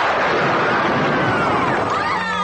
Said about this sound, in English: I want to show you a trick Mother showed me when you weren't around. Use your lightning bolt.